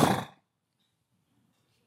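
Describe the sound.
A person imitates a horse snorting with a single short, forceful, breathy burst of air, loud, followed by near silence.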